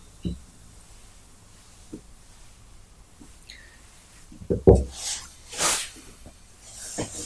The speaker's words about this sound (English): Pouring the Bundaberg.